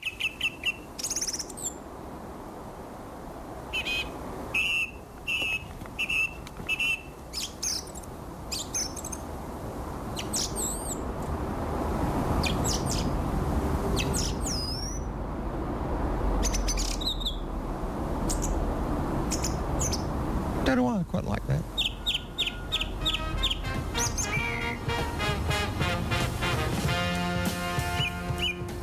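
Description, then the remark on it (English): A single song thrush sings in a suburban backyard on a still, windless, cold, grey winter day, repeating short bright phrases in clear bursts over a steady low rumble of background noise, with a faster trilling run of notes toward the end. “A single thrush.”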